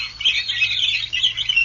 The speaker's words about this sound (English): And the birds. The Indiana Dunes.